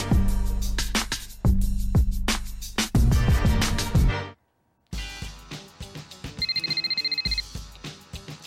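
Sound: telephone ringing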